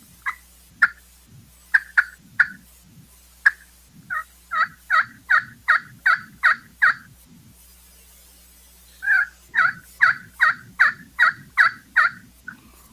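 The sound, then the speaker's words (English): Sharp, loud turkey clucks and yelps made on a friction call: scattered single clucks, then rapid rhythmic runs of raspy yelps, a pause, and another fast, louder, aggressive series, clear with no talking. “If I don't get a response, then I'll go to doing more of a series of clucks and yelps that are a little bit louder, a little bit more aggressive.”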